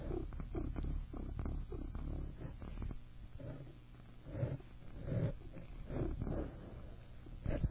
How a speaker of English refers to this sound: So I put the mic there to try and get her purring